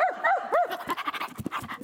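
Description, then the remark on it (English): A person imitates a dog, letting out a few quick, yelping barks before switching to rapid, breathy panting in a steady rhythm. The voice is fairly loud, with no talking. “I mean, I bark. I do. I full commit.”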